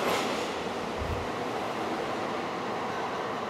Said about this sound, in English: Actually, the train sounds kind of quiet compared to everything else.